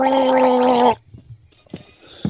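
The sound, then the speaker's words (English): A person gargles loudly into a phone for about a second, a bubbling, throaty tone with steady harmonics, then it cuts off into near silence with a few faint clicks and soft noises. “Well, it's a bit awkward, but I can gargle.”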